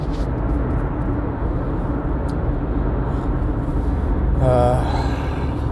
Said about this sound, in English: I hope, as a small aside, I hope the road noise isn't too much. I'm on my way to work.